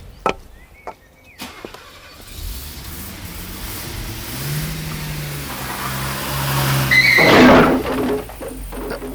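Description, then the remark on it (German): A car engine revs and grows louder for several seconds, then a single loud crash as the vehicle smashes through a garden gate, followed by the engine still running. No one speaks. “Das war wohl mein Gartentor.”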